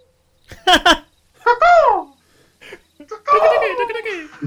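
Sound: person imitating bird calls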